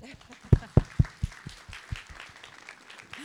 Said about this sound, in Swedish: har jag nu den stora äran att be om en applåd.